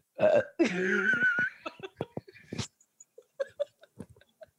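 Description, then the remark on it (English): A loud, drawn-out burp after drinking seltzer rumbles for about a second, followed by a scatter of soft clicks and muffled rustling as something brushes the microphone, which the burper tried to cover. “I'm drinking seltzer and I shouldn't have because all I want to do is burp right now.”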